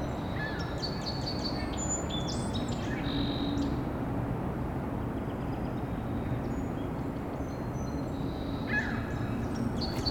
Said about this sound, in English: The ring-billed gull, downy woodpecker, and red-belly woodpecker.